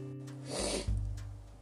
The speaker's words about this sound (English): My nose is a bit blocked, and it's a little bit runny, so I hope you don't mind me sniffing in and out of there along the way.